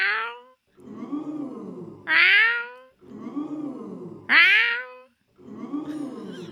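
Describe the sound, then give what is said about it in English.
A person's voice imitates a cat, making a series of drawn-out meows and yowls that rise and fall in pitch, repeated in a steady pattern, fairly loud. “I've actually fooled cats.”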